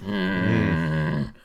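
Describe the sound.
A person voices a low, rumbling lion-like growl, one sustained, rough roar lasting just over a second, loud, then cutting off abruptly.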